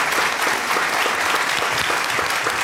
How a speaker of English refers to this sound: But before we do, how about a round of applause for our fabulous panelists tonight?